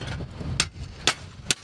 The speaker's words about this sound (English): A worker took out a yellow crowbar and a hammer, prying the letters T-R-U-M-P off a stone wall in front of the building.